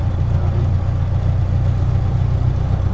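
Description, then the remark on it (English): A 95-year-old vintage car engine idles steadily, a continuous low, throbbing rumble with an even rhythm and no voices. “And for a car that's 95 years old, still going. It's an amazing old bit of machinery.”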